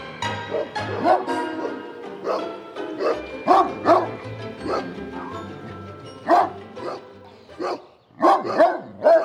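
animal, dog barking

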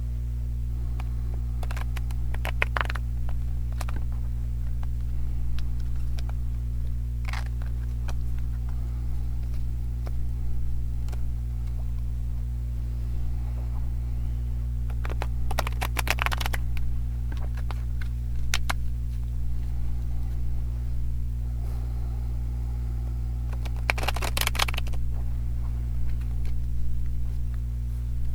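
household object, shuffling oracle cards

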